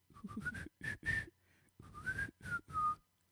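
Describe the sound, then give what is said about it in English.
Someone whistles a short melody mimicking a phone alarm tune, in two phrases of quick, bright notes that rise and dip in pitch, with breathy, moderately loud bursts and a brief pause between. “Yeah, you did the sound of the song on my phone for the alarm.”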